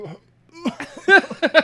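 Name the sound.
burp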